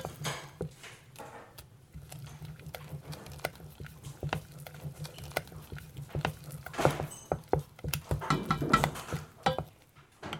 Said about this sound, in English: The porridge bubbles on the stove.